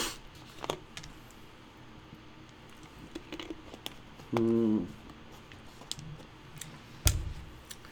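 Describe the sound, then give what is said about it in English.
A speaker pausing a Bible lesson sips water: a few soft clicks and small wet sounds, then a brief low hummed tone like a swallow, and a sharper knock near the end. No one speaks. “I'm going to give you the opportunity to get there when I get this sip of water.”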